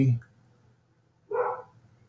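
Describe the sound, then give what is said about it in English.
Dogs bark and whimper in the background: a brief yelp at the start, then a single louder whining bark after a short pause, over a steady low hum. “Jeez, can you hear my dogs?”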